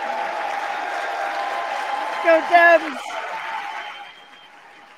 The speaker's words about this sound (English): What was that cheering? What was that?